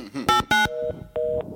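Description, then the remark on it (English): Phone keypad tones sound in quick succession as someone tries dialing 9 to get the phone to dial out: two loud, buzzy beeps followed by two softer, steady mid-pitched tones, each lasting a fraction of a second, with faint murmuring underneath. “The phone since I don't know how to dial 9.”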